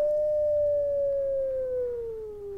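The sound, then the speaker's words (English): A steady electronic tone from a light detector app, while it is turned around a room, hums on its own, its pitch gliding slowly downward over a couple of seconds, moderately loud with a faint overtone and low background rumble. “here is light detector, a little bit different tone”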